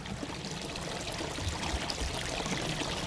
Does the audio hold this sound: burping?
no